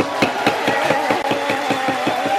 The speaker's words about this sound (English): And then she was beating the gavel there like she was applauding with the gavel. This was a big moment for Speaker Pelosi